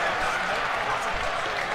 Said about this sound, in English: Fowler is going to try and buy a free kick, and Fowler does buy a free kick. And another huge cheer goes up.